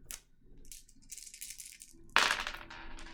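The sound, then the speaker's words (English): Six-sided dice (D6s) for a survival roll in the tabletop role-playing game Forbidden Lands rattle and clatter in a series of quick clicks, ending with a louder burst of rolling and tumbling before settling; no voices. “So anytime you enter a new hexagon, roll survival. Yep. Which is on wits, so that's I take my attribute dice and my skill dice.”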